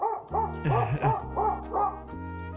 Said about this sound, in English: Apparently the dog also has an opinion. He's going to keep barking.